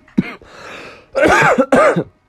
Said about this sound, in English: Excuse my cough.